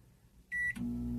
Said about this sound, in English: Can Alexa microwave a burrito? Alexa, cook for 1 minute.